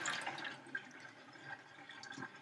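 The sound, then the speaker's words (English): Milky water pours steadily from a bowl of raw chicken as it is drained off, a continuous splashing, gurgling stream that stays fairly soft, with no voices. “Now, she's just drained all of the milky water off of the chicken, and”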